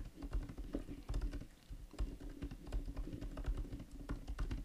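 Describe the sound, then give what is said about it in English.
Rapid, irregular keyboard typing with many quick clicks and taps throughout, fairly quiet, over a low steady hum with no talking. “You can talk to people on there while typing.”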